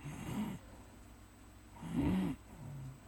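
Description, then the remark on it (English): A voice imitates slow, heavy breathing: two drawn-out, rasping breaths, the second louder and longer, with a quiet pause between them and no talking. “Dude, I'd be breathing like this.”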